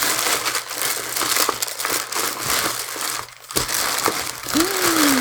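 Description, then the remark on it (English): Loud, continuous crinkling and rustling of wrapping paper being torn open as a gift is unwrapped, with sharp irregular crackles and a steady low hum underneath, no talking. “Opening another thing now.”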